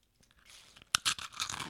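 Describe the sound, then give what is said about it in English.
Crisp crunching as someone bites into a cookie: a soft rustle, then a sharp snap followed by several quick brittle crunches of chewing, with no talking. “Ooh, I hope here goes my crunch.”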